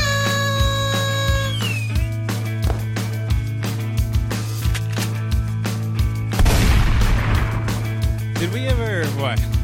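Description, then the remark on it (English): Fireworks go off in a rapid series of sharp bangs and pops, with whistling streaks and a dense crackling burst partway through, all over a steady low hum. “Did we ever say that we were getting rid of the fireworks?”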